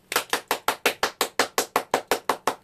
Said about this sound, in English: Are you the only one clapping? I am the only one clapping to avoid the long, awkward silence.